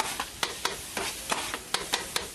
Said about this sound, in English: So we hear some of the sounds around his neighborhood as there's a street vendor grilling chicken.